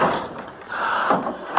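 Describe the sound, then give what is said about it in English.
A front door swings shut: a drawn-out scraping creak builds for about a second, then a soft knock and a final dull thump. No one speaks. “Something closed the front door.”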